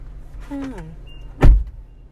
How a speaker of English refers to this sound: I'm riding a car with Tori and she's doing Uber Eats. So that's what y'all hearing in the back